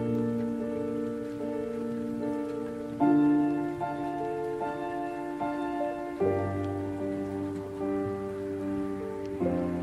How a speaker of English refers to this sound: Hey. Sound of the rain. Sound of the rain, baby.